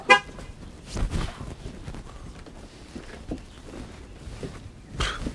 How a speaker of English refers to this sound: As we approached the house, we immediately lost the element of surprise when my too-fancy-for-me rental car honked at us.